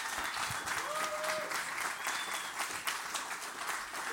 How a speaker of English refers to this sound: Praise the Lord. Give him a big hand clap. Praise the Lord.